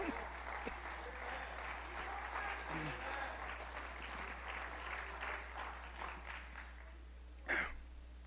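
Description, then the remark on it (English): An audience claps steadily as praise to the Lord, a dense, sustained patter of many hands running through the whole stretch, with a brief louder burst near the end and a low steady hum underneath. “Why don't we give the Lord a hand clap of praise today?”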